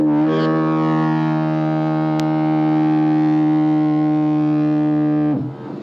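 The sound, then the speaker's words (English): A single long foghorn blast from a navigational foghorn, a deep, buzzing tone rich in harmonics, holds steady and loud for about five seconds before cutting off into a brief fading echo out to sea. No voices are heard. “No, she'll echo, re-echo, re-echo, echo out to sea. But actually, she's not regarded as a particularly good navigational aid, you know.”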